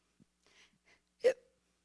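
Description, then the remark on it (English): A single loud, sharp hiccup from a giant fish pops out near the end, abrupt, preceded by a few faint breathy clicks and rustles in otherwise quiet surroundings. “How can I even think to repent when this floating elephant thing, and it's got the hiccups.”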